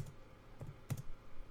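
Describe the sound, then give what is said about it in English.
Soft, irregular keystrokes on a computer keyboard as the name Your Black World is typed in: a handful of quiet, sharp clicks spaced unevenly, with a quick double tap near the end, over a faint hum and no voices. “I'm typing it in right now.”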